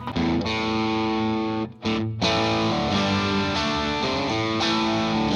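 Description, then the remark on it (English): Heavily distorted electric guitar chords, played through an amp with a distortion pedal, ring out loud and sustained, with a brief cut near the middle before the thick, fizzy tone resumes. “On this amp, you're going to have to, like, adjust the tone way down.”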